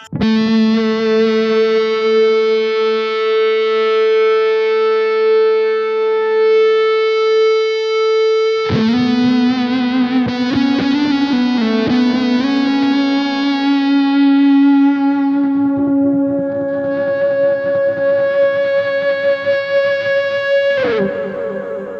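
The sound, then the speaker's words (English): Sustained electric guitar notes, played through a compressor and the Ionosphere reverb into a profiler while seeking feedback, ring out with heavy compression and lush reverb, long held tones shifting to new pitches and blooming into a washy, echoing tail. Loud, with no talking. “Compressor and the ionosphere reverb.”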